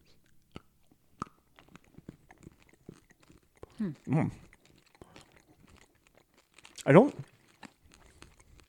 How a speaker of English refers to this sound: I get the popcorn. There's like a crunch to it. I get a little bit of popcorn.